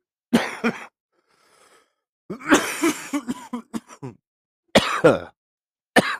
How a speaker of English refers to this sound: Because this is live radio, and I like to cough and sniff, pick my nose.